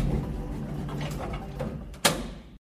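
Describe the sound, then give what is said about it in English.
Elevator doors slide shut with a steady low mechanical rumble, ending in a sharp thud before the sound cuts off abruptly. “then opens the backpack as the elevator doors close.”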